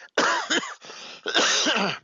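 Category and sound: human body sound, coughing fit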